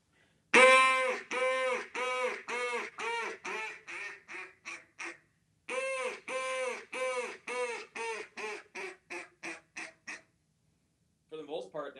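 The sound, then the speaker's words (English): A duck call blows a comeback call, an extended greeting call imitating a duck pleading for another to come back: two rapid runs of loud, pleading quacks, each starting strong and tapering off, clear, with a man's voice starting briefly at the end. “Then really the last one would be like a comeback call. That's a duck kind of pleading for another one to come back.”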